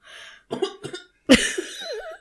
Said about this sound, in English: If you cough like that, he'll pop you in the mouth.